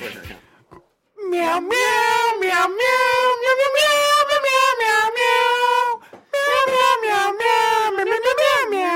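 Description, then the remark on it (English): People sing a slow, sweeping movie-theme melody entirely in drawn-out meows, imitating a cat's voice. The tones are loud, with long sustained notes and a brief pause partway through. “that was us meowing to the theme of Jurassic Park”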